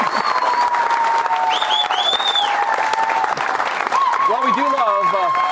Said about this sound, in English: You can applaud. That's a good sentiment to applaud.